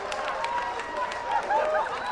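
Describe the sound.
A church audience claps for the word during a sermon in a steady, scattered patter while voices call out and sing over it, the sound staying fairly loud and busy throughout.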